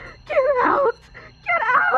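Two loud, warbling shrieks with wavering, bending pitch, an eerie wail-like creature cry, separated by a brief lull with a faint low hum underneath.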